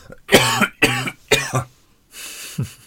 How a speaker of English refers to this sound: But excuse me, this cough is killing me.